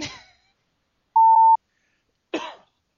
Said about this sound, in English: Just a minute, I got to clear my throat. Oh, that was better. A little careful. Lung butter going on there.